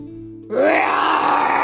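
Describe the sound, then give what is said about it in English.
A snow leopard's sudden loud, growling roar bursts in after a brief low hum, rising slightly in pitch and holding strong and raspy for over a second with no talking. “The snow leopard roared.”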